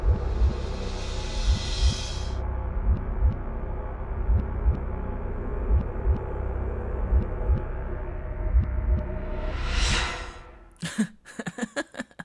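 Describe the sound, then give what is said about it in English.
A steady heartbeat thumps in a regular low rhythm beneath a constant whooshing, muffled hum, like listening through a stethoscope, before ending in a short burst of crackling noise. “Well, it sounded like a heartbeat, right?”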